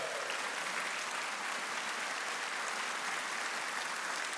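A church audience at Fellowship claps steadily throughout to welcome a new community pastor, a dense, even wash of many hands at a constant moderate loudness with no talking over it.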